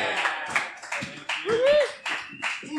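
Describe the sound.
A small group applauds with steady, crisp hand claps throughout, while a voice briefly whoops or calls out midway through the clapping.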